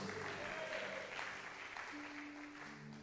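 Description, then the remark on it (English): A church audience claps hands and shouts "I receive grace" in a dense, continuous burst of applause mixed with crowd voices, filling the space loudly for a few seconds with a sustained tone underneath. “Somebody clap your hands and shout, I receive grace.”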